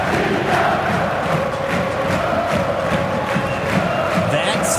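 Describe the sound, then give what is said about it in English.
A dense soccer stadium crowd roars and cheers continuously at a game, a loud wash of many voices with rhythmic surges and a steady sustained tone running beneath the noise. “Here's a little bit of what some of it sounded like.”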